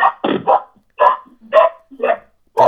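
A dog barks in the distance about seven times, a quick cluster of three followed by single barks spaced roughly half a second apart, clear and fairly prominent with no talking over it.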